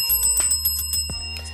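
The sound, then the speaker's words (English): A bell rings with a sustained metallic tone, struck repeatedly in quick succession so the ringing overlaps, fairly loud over a low background rumble. “Taco the motherfucking Bell is my trusty sidekick, my co-host, and he will chime in like he's doing right now.”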